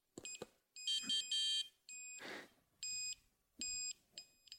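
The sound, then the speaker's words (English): A watercraft course-guidance device emits repeated bursts of bright, high-pitched electronic beeping, five or so clipped pulses with short pauses, separated by a few soft knocks and a brief whooshing noise; its two different tones signal straying off course to the left or right. “You get then two different tones that tell you if you're straying off course to the left or right.”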